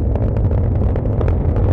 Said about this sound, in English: So we have liftoff. That is amazing. The light is just extraordinary. And now you can hear the sound, this roaring of 9 engines.